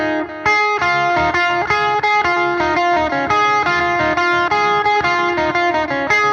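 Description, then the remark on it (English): An electric guitar plays a song's lead line thickened by stacked delay, the delay type the player uses for most leads, its notes smeared into repeating echoes that almost sound like reverb, steady and loud with no talking. “this is a song we have called … where I use two different types of delay. But this is the stack one that I'll do for most leads”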